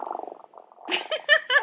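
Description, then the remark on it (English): A person imitates a cat's purr with a rapid rattling hum lasting under a second, followed by a few brighter, louder voiced bursts. “No, if I purr like a cat, you can hear it.”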